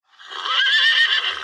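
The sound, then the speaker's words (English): A single horse whinny played from a phone app rings out clearly for about a second and a half, a bright, wavering neigh with a slightly thin, tinny quality, heard alone with no talking. “So you have horses, all different horse whinnies.”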